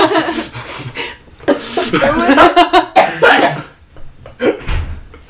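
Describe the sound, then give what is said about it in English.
A run of harsh coughs from a woman in uneven bursts, mixed with bits of chuckling and a throat-clearing rasp, ending in a final louder cough. “She's been coughing all episode.”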